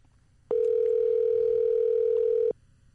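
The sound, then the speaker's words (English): A phone call's ringing tone as a call is placed: one steady, mid-pitched electronic tone that sounds for about two seconds and then cuts off, loud and alone over a faint low hum, with no talking. “Matter of fact, I'm about to call her ass right now.”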